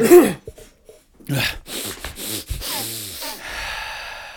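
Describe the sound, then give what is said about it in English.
Several loud, breathy gasps and exhalations are blown straight into a microphone as a pre-show bit, uneven bursts of rushing air, some with a slight voiced sigh or snort, and no words spoken. “Breathing into it.”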